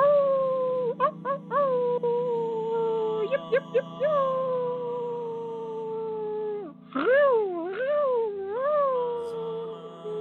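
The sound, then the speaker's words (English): Voices of people in a circle howl in long, wavering tones, imitating animal calls, several overlapping; after a brief pause, swooping rising-and-falling howls start up again. “The circle erupts into noise of howls and other animal calls.”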